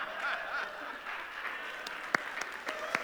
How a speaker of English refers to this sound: Okay, let's give our three contestants a round of applause. Thank you all.